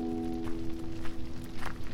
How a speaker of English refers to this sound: And then probably I just stop. You hear footsteps approaching.